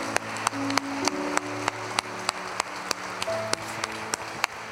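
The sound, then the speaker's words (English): A crowd claps a hand clap of praise to God in a steady rhythmic beat, sharp unison claps about twice a second, over sustained organ-like chords held underneath, with no talking. “Come on, let's give him a hand clap of praise in this building.”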